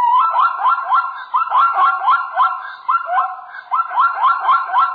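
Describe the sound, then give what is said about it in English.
A zebra barks in a rapid, continuous string of loud, high-pitched yelping calls, each rising and falling in a wavering, siren-like pattern, with only a brief break partway through and no talk. “When zebras wake up, they bark a bit like a small high-pitched dog.”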